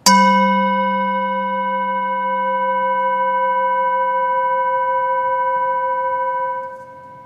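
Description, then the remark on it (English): A single chime is struck once and rings out with a clear, steady tone and bright overtones, sustaining for several seconds before fading quickly at the end. No voices are heard. “As we listen to the chime, let us remember to our connection to each other and the world around us.”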